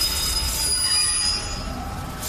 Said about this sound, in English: And so, just like the bells of Riverside Church, the dominant sound of this neighborhood would have been these elevated trains, which made a peculiar kind of screeching sound.